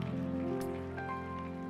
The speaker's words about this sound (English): And would somebody give him praise one more time by clapping your hands? Amen.